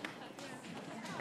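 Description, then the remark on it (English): A studio audience shuffles and stomps its feet in a steady, rustling wash of noise, with scattered taps and claps blending together at a fairly low level, providing foot stomping and clapping for a song. “Not just shuffling, noisy stomping and clapping.”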